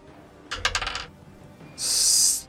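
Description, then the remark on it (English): An eight-sided die (d8) clatters across a table in a quick burst of hard taps that settle within half a second, followed by a short, bright hissing sound, with no one speaking. “Yeah, you need to roll a either 2d4 or a d8. I'll do a d8.”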